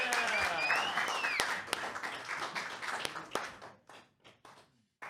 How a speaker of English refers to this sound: Big round of applause. Yeah.